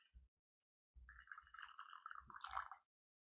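A short, steady pour of hot water from a kettle into a small tea bowl, about a couple of tablespoons, lasting a couple of seconds with a bright ringing trickle, framed by soft knocks as the kettle is lifted and set down.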